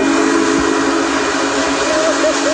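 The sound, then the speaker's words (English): The Union Pacific 4014 "Big Boy" steam locomotive, built in 1941, rumbles through the city of Mansfield on a Saturday morning, a steady dense roar of rolling train noise with faint whistle-like tones rising near the end; no one speaks. “Big Boy is a steam locomotive built in 1941”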